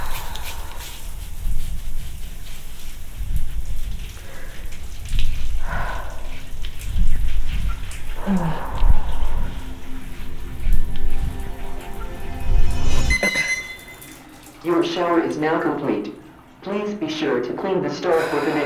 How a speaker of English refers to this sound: Your shower is now complete.